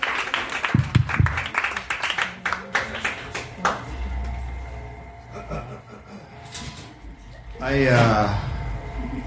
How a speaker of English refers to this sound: Clap your hands.